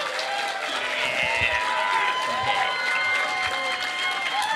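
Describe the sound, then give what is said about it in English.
An audience applauds steadily for several seconds, a dense wash of clapping mixed with crowd murmur and a few higher cheering tones, holding an even loudness throughout. “Round of applause.”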